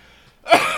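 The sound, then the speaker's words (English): A single sneeze: a brief quiet breath, then a sudden loud, hissing burst with a slightly voiced edge, heard alone with no talking. “Excuse me. Gesundheit.”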